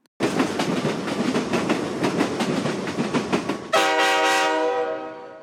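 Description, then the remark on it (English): A train on the Trans-Mongolian Railway in Russia rumbles along the tracks with a steady, rhythmic clatter of wheels, then a loud, sustained horn blares near the end, prominent, with no voices. “in this episode, I'm taking you to Russia and along the Trans-Mongolian Railway.”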